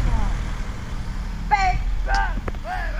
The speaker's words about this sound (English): It sounds a bit like her engines. Oh. Could be the same car, not.